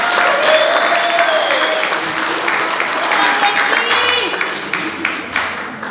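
A crowd applauds steadily for several seconds, a dense wash of many hands clapping with some cheering and whistles on top, fading slightly toward the end.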